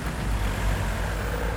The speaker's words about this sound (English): I can hear people travelling across town to work, sitting alone in their cars, bumper to bumper with unseen strangers. I can hear food in lorries arriving from all over the continent to be stacked on supermarket shelves.